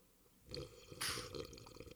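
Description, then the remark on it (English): A wet, slurping sip from a drink into a microphone, heard loudly with no talking, including a brief hissy burst of air and liquid in the middle, then softer smacking and swallowing noises. “He says sipping gloriously into the mic.”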